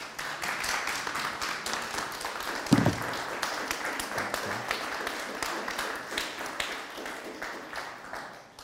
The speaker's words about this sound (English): Like, so I would just like to honour these guys before they've even opened their mouths. So can we stand and just clap them?